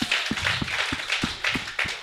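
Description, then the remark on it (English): A round of applause: steady, evenly spaced claps ring out over a continuous wash of hands clapping, holding a brisk rhythm at a fairly loud level with no voices. “Oh, give her a big round of applause.”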